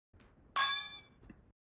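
Drinking glasses clink together in a toast over a first drink, one bright ringing strike that sustains with shimmering high overtones and fades, followed by a faint softer tap.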